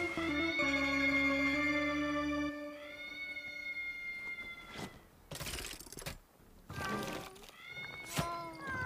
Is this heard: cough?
no